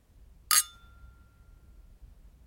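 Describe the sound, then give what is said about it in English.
A single bright clink of whisky glasses touching in a toast, its thin ringing tone lingering and fading over a couple of seconds against a quiet, low background hum. “Join me in raising our drams to the makers who crafted this whisky.”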